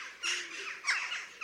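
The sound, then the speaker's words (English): Jackdaw calls: three short, sharp, high 'chack' notes repeated in quick succession, clear, with no talking. “here are calls which you may well hear outside your house or your allotment. First, the jackdaw.”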